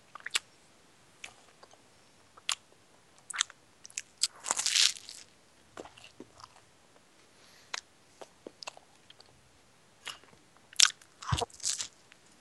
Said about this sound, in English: I have all those sounds recorded. The munching sound.